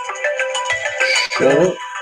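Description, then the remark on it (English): A phone ringtone plays a bright, repeating electronic melody with stacked tones, loud, briefly overlapping a low rumble and a short burst of a voice. “I don't even answer these phones anymore.”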